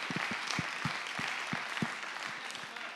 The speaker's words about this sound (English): So first off, I just say give yourself a round of applause for your giving.